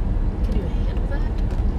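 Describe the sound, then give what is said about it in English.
A car rumbles past, a steady, loud low-pitched road roar that holds at an even level throughout without fading away. “There's a car coming. I'm going to turn around after it passes us.”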